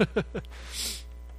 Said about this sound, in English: I can tell you, just the fact that I'm blowing my nose shows that I'm not a perfect person and that I'm a sinner.